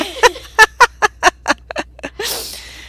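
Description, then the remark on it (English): Ducklings in a cage in a bedroom vocalize in a quick run of about ten sharp, chirpy calls, evenly spaced and fairly loud, ending with a short burst of rustling noise. No one speaks. “And now they're all in a cage in my bedroom”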